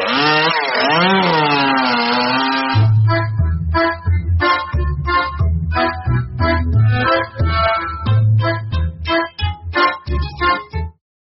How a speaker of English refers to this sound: get the chainsaw.